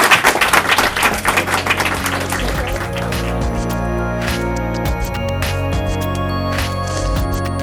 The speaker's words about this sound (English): And let's give a round of applause to our speakers.